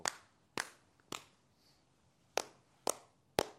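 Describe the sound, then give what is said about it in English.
Six sharp hand claps in two groups of three, with a pause of over a second between the groups, made as a sync clap for a stream recording. Each clap is crisp and snaps off quickly. “Real quick for people on the stream, I just kind of want to do a quick sync clap.”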